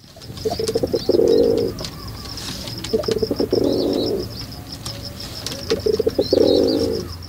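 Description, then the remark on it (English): Rock pigeons coo in three low, throaty bursts, each a rolling murmur that swells and fades, with faint high chirps from other birds in the background. “These guys court each other with gentle coos, and to signal distress, they use a harsh grunt.”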